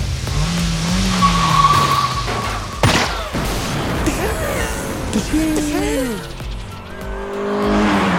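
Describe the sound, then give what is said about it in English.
A car chase in a Bollywood movie: engines roar continuously while tires skid and squeal in rising and falling screeches, a sharp crash or bang cuts in early, and voices can be heard beneath the action as a man shoots at a car. “Cue the guy shooting at a car and explodes.”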